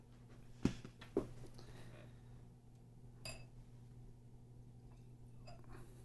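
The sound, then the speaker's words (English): Two sharp glass clinks close together near the start, followed by softer handling and faint sounds of whiskey poured from a hot sauce bottle, over a steady low hum; no one speaks. “And for people that can't see this, this is out of a hot sauce bottle, which is a great way to aerate your whiskey.”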